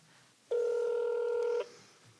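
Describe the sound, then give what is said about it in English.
A single steady electronic touch-tone telephone tone, like one key being pressed while dialing to make a phone call, holds for about a second before cutting off cleanly. It's clear, with no voices. “I gotta make a phone call.”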